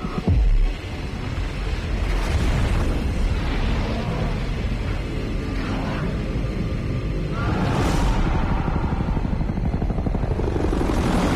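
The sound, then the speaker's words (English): A nuclear bomb explosion blowing up Las Vegas: a sudden blast followed by a sustained, deep, thundering roar that swells again near the end, loud, with a helicopter-like churning mixed into the rumble. “Many zombies fall to automatic gunfire and bomb blasts, and the promised nuclear bomb really does blow up Las Vegas.”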